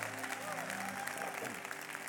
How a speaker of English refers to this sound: That was our youth on the second song. They were blended in with the praise team. Let's give our youth a big round of applause.